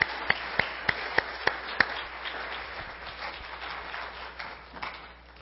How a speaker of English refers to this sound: Let's give these nice actors a round of applause.